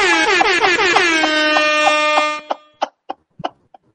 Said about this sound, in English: I'm going to bring this up and then immediately switch because this is getting a rap air horn.